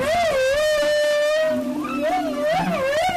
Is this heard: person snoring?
no